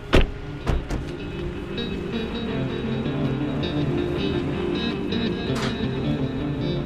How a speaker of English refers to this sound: We park and walk up to the front door.